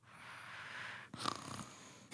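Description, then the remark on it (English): A person imitates their cat's loud snoring: a long, soft raspy inhale followed by a rougher, fluttering purr-like snort, fairly quiet, with no words spoken. “my cat literally wakes me up because of his snoring”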